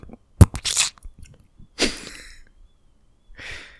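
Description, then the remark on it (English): A small meteor strikes the ground in Central Park, New York City, with a sharp thud and a crackling, crunchy burst, followed by a hissy rustle and a softer sizzling crackle a moment later. No one speaks. “This is what the meteor sounded like.”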